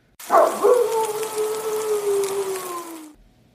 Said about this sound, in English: Hello, everybody. I hope you heard the grill, the sizzle.